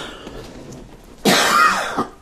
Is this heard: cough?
yes